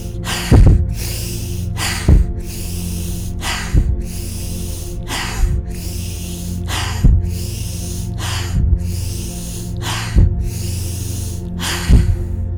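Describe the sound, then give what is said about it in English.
A steady series of eight deep, audible breaths, sharp inhalations through the nose followed by longer exhalations through the mouth, repeating about every one and a half seconds over a low background hum, with no talking. “We're going to begin with 8 breaths, and I'll do those with you, breathing in through our nose and out through our mouth.”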